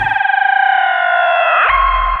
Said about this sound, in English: I think I need to get into a time machine